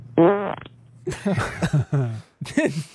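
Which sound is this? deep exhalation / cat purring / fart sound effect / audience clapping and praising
fart sound effect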